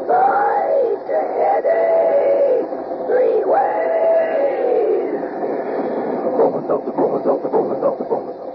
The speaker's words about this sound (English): While we're waiting for Ellery to tell us something about next week's mystery, come on there, swing aboard our famous talking train.